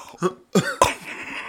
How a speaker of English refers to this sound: Damn. He already got that smoker cough on him, bro.